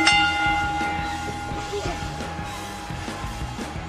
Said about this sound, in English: ring the bell so I can go to bed.